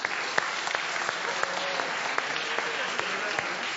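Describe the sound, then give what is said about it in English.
An audience claps steadily to vote for the best wrapped gift in a gift-wrapping contest, a dense patter of hands with a few sharper, louder claps standing out, sustained at an even level for several seconds without anyone speaking. “Okay, so if you think that this is the best wrapped gift, at least the top bit, then a round of applause.”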